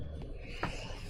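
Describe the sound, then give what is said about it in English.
A single short, sharp sneeze bursts out over a steady low background, preceded by a faint breathy catch a moment earlier. “Bless you.”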